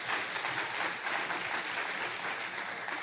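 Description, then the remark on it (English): An audience claps steadily for a few seconds in praise of God, a dense, even wash of many hands applauding together with no breaks and no voices standing out. “Why don't we give God a hand clap of praise?”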